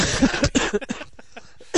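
A string of short, harsh coughs: a few quick bursts in the first second, a brief pause, then one more cough at the end.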